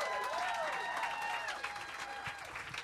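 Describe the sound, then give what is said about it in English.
Steady audience applause for the host, dense clapping from many hands with a few cheers rising over it, sustained throughout and fairly loud. “Clap it up your host.”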